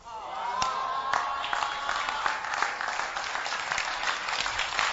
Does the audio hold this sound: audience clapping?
yes